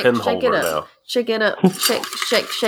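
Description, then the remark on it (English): Pens clatter and rattle against the inside of a vase as it is shaken in bursts before one is drawn, with a short pause partway through and a voice faintly mixed in. “Let me get all of the pens out. All right. Shake it up.”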